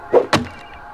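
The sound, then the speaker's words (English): A video game chop at a plant: two quick hits in succession, a muffled thud followed by a sharper slicing swish, then a faint lingering hum. “Yeah. We chopped it down.”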